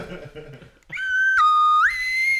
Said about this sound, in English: slide whistle in the morning. Good slide whistle to you.